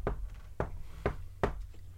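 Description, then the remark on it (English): Four distinct knocks rap out in a quick patterned rhythm at a door, each a short hard thud like knuckles on wood, a specific pattern knock, moderately soft with no voices. “There's a knock at the door, but a specific knock. It sort of like sounds like a pattern knock”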